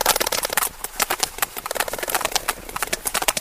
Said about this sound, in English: Professor Whitehead records the whales' vocalizations, which vary depending on where they live and what they're doing. What we're hearing is a large number of sperm whales clicking.